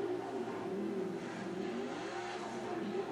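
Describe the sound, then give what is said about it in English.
An off-road race buggy with a different style of engine from Razors and Can-Ams revs steadily and loudly throughout, its pitch rising and falling in waves as the throttle works, with no voices. “I like the way that sounds. Yeah, it's a different style of engine.”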